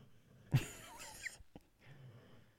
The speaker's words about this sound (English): Can you hear this beagle snoring right now, by the way? Is that being picked up on the mic? Muggsy keeps snoring.